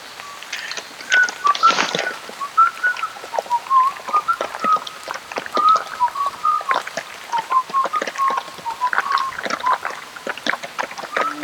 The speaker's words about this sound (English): The thunder getting louder. And the rain is oddly getting softer. Maybe the storm is over.